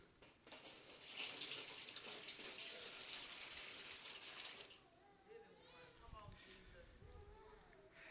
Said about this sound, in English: And after that, he poured water in a basin.